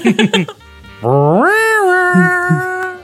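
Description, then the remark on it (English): After a few quick vocal sounds, a person's voice imitates a cat with one long, drawn-out meow that slides upward and holds steady, loud for about two seconds. “Now you're turning into a cat. Meow.”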